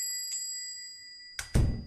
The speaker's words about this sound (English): I pushed open the door, and a bell jingled somewhere.